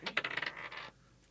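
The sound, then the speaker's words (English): A small hard seven-sided die (D7) clatters and tumbles briefly across a table, a rapid burst of bright clicks that settles within a second, followed by near silence and one faint tick. “So let's start with a D7. They're very odd dice.”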